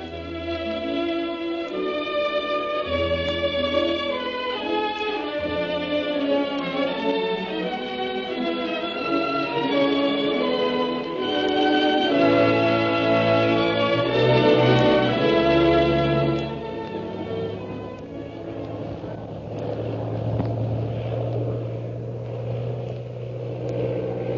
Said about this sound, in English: Meanwhile, Shanghai Lil continues her attempt to escape her pursuer by stunting her plane. Jim tries to watch out for the plane bearing the mysterious purple triangle.